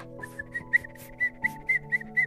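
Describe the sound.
Someone whistles a repeated short call, a string of bright chirpy notes in a steady rhythm over a low sustained hum in the background, fairly clear, calling pet birds named Lua and Indy to come back.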